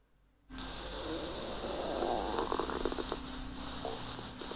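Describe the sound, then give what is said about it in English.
A low, gurgling stomach rumble from a person's belly, captured in a sleep recording, churns over a steady hiss, with short bubbly squeaks and pops bunched in the middle before settling back. No one speaks. “I don't know if you heard that, but it's just my belly.”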